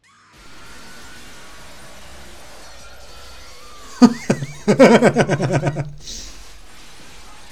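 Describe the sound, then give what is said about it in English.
A secretary is kicked through a sheet of glass: a sudden sharp crash of shattering glass cuts through a steady low background hum, followed right away by a quick burst of short, choppy vocal cries before things settle again. “Just killed the secretary by kicking her through a sheet of glass.”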